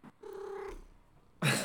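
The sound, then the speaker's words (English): A cat gives a single drawn-out meow, followed after a short pause by a sudden loud, harsh burst of noise. No one speaks. “Obviously they're cats.”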